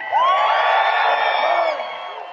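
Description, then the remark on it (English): A large crowd cheers loudly at Denver Broncos training camp, a dense roar of many voices with shrill whoops and rising yells layered on top, holding steady for a couple of seconds before easing slightly. “I want to play this audio of Russell Wilson addressing the crowd at Broncos training camp, and we'll react to it on the other side.”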